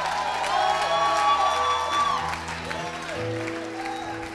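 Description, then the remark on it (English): A large audience bursts into sustained clapping mixed with cheers and shouted praise to Jesus, a dense, loud wash of applause and voices that stays strong before easing slightly toward the end. “If you believe it, clap your hands and give Jesus a shout of praise.”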